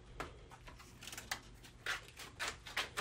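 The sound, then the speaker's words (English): A computer keyboard is pried loose from its case, giving a series of sharp plastic clicks and snaps at uneven intervals, fairly quiet, with no talking. “Now I've got the keyboard loose.”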